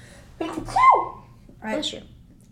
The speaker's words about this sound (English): Okay, hang on. I'm gonna sneeze.